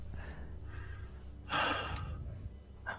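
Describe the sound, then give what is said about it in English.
A person imitates someone gasping for air while coming back from being unconscious, with a loud, breathy intake of breath in the middle followed by a shorter gasp near the end, without speech. “And he kind of like starts like gasping for air as he comes back, and then they also kind of give you a hand up.”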